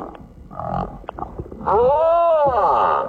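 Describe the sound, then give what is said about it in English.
A male humpback whale singing for a mate: after a softer stretch of low murmuring, a loud, drawn-out, tonal moan swells in, arching up in pitch and sliding back down, rich and resonant. “Humpback whale singing his heart out for a mate.”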